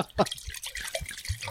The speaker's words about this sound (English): Whoops. Maybe. Forgot how to pour wine.